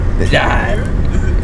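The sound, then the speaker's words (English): A steady, loud low rumble of road noise fills a moving car's interior, with a voice briefly sounding over the constant drone. “We're just fucking in the car.”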